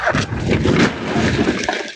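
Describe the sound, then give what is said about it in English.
A loud crash of a stolen Kia driven by a car thief slamming into a house in the 3200 block of Ohio, East St. Louis, around 8 in the morning, caught on camera, with a dense burst of breaking, cracking debris lasting about two seconds before tapering off. “A car thief in a stolen car crashes into an East St. Louis house, and it's all caught on camera.”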